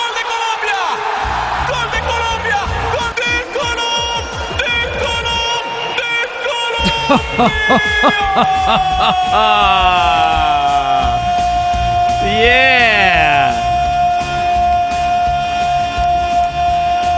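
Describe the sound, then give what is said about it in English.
A Colombian goal celebration from a national team soccer match at the World Cup, set to pounding techno with an echo chamber: a long held shout and swooping, echo-drenched vocal effects layered over a steady electronic beat and crowd-like roar for about seventeen seconds. “whenever Columbia scores a goal in a national team match in the World Cup, they do the same thing. They use techno and an echo chamber”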